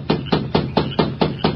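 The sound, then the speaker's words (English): At night, a masked man raps on the wooden door of a lighted bunkhouse: seven firm, evenly spaced knocks, a rapid steady rapping with dull, hollow thuds and no voices. “Then, with Dobbs close by, he rapped on the door.”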